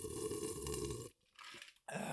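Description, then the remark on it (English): Loud, wet slurping of a drink right up against the microphone, in a long noisy pull, a brief pause, then another sucking burst, with no talking. “I don't know why he has to slurp his drink directly next to the recording device.”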